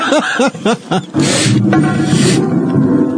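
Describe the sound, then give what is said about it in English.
A didgeridoo playing in a song gives several short, bouncing hoots that sound like laughter, then swells into a loud, raspy, continuous drone with a rough, growling texture that holds to the end. “I didn't know you could make a didgeridoo laugh.”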